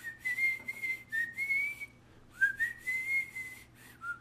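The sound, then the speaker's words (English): Someone whistles Proto Man's theme from the video game Mega Man 3, two clear melodic phrases separated by a brief pause, fairly loud, with no talking. “Ever since, I just remember playing Mega Man 3, and you hear that whistle.”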